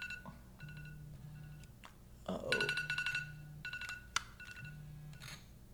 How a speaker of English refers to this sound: Sorry about that. I had an alarm that is on snooze, I guess.